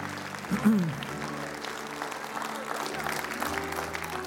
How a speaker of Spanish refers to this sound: Es un aplauso de ánimo a Dios para ellos, se lo merecen.